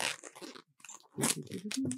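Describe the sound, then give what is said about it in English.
A balloon squeaks and rubs as it is twisted during live balloon tricks: a run of scratchy, crackling squeals in uneven bursts, with a short pause in the middle and a brief higher-pitched whine near the end. “They're just hearing like this balloon squeaking in their car or on their phone.”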